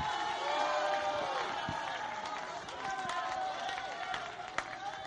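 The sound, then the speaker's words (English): A crowd shouts and cheers together in a sustained, dense roar of many voices, with scattered claps and whoops rising out of the steady noise, responding to a preacher's call to shout with a voice of triumph. “Somebody shout with a voice of triumph.”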